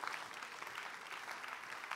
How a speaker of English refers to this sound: Give the Lord a clap of faith for food, guys.